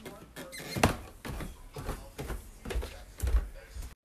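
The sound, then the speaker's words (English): Wooden stairs in a house creak and squeak repeatedly as someone climbs them, irregular groans with soft thudding footsteps underneath, moderately loud. “As you have now heard, my house has very creaky stairs.”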